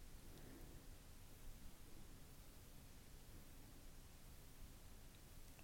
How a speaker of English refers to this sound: The waterfall descends like a liquid slide. Listen to the relaxing sound of this graceful waterfall. Plunging into crystal clear depths.